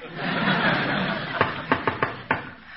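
A patterned knock on a door: five sharp, fairly loud raps in an uneven rhythm, coming after a stretch of soft, hissy murmur that sounds like faint chuckling.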